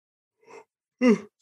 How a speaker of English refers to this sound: Sorry, I don't know why I yawned,